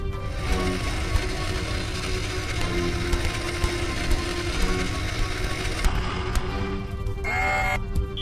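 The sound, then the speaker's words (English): An electronically locked door mechanism is forced open by hand: steady grinding rumble with scattered metallic clicks and ratcheting, ending in a brief high creaking whine. “The door has been locked electronically. Attempting to open manually.”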